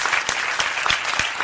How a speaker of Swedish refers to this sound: En applåd.